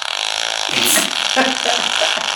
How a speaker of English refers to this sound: My favorite fart sound in the world, by the way. Thank you. There's like 18 different fart sounds on that phone.